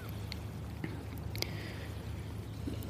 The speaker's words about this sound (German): ich sitze gerade am Meer